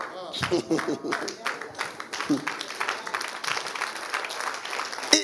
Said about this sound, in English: Why are you standing there? You want to clap for Jesus for that statement?